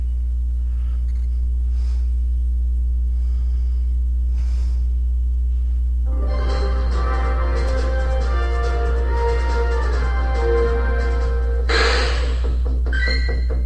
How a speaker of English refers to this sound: Alright, we have made it to the next segment of the second half, and that is Pokemon Go for you guys. Let me turn this up a little bit so you can hear it better.